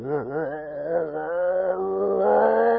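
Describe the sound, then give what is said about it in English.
A person at a gathering where people were being "slain in the spirit" lets out a long, low, growling roar like a lion, wavering at first and then holding steady and loud for about three seconds, with no other talking. “That was one of them, roaring like a lion. But it didn't sound like a lion. It sounded like a demon to me. It was real low.”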